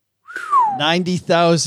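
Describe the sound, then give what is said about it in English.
A person whistles a single, fairly loud falling note, sliding downward for about half a second before breaking into voiced vocal sounds that continue to the end. “Why'd you whistle?”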